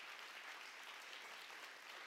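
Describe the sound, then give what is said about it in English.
An audience claps steadily in a dense, continuous wash of applause that holds an even, moderately loud level throughout, with no voices standing out, applauding standing couples married 25 years or longer. “We want to applaud you for that.”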